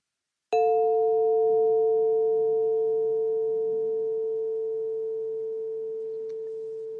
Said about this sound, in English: The second chime means listen very closely to the ringing of the chime until you cannot hear it anymore. You may want to close your eyes so that you can really hear the chime sound until it's totally gone.